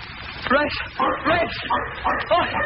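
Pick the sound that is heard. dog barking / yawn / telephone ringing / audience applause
dog barking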